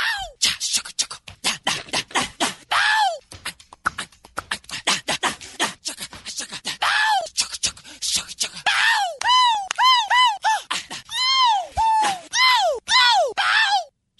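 A rapid string of isolated wordless vocal sounds taken from a recorded song: sharp grunts, breathy exclamations and clipped growls, then rising and falling yelps with clear harmonics, delivered in quick staccato bursts with no words.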